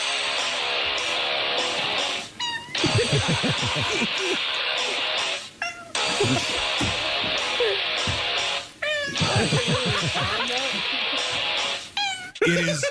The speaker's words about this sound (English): There was a video on YouTube recently of a cat singing along to one of your songs.